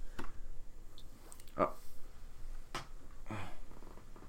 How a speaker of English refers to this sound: Oh. Damn, cat started climbing on the keyboard. All right, we're all good. I got worried for a second. She was like standing really close to the delete button.